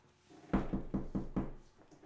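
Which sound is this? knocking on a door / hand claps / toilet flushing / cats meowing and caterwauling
knocking on a door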